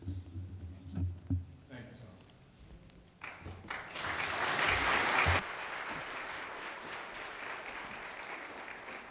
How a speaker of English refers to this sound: You might want to wait till after I preach to hold your applause till then.